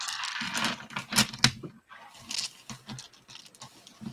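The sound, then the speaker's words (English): Small hard real dice clatter and tumble across a tabletop in a quick burst of sharp clicks and rattles, with a couple of louder knocks in the middle, fairly quiet, rolled by a player during a tabletop role-playing game. “Which one of you nerds is rolling actual dice?”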